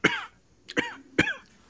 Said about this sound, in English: You got a little cough, a little dry throat. What's happening? You need a break?